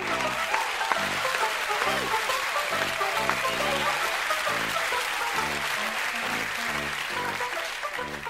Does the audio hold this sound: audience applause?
yes